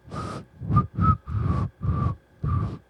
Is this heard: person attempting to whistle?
yes